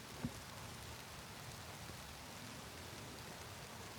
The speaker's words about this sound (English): I'm just stuck in a tree at the moment, trying not to let you hear that I'm stuck in a tree, but it's very spiky. I'm just sheltering from the rain again.